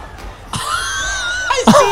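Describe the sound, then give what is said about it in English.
A single voice lets out a loud, drawn-out scream lasting about a second, seemingly imitating a mosh pit crowd's scream, then breaks into a couple of harsh, ragged vocal bursts. “Just immediate a pit scream.”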